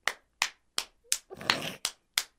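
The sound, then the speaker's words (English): Crisp hand claps in a quick, steady rhythm, about seven sharp slaps spaced roughly a third of a second apart, briefly broken midway by a short rushing noise. “"No, it's a fast clap.”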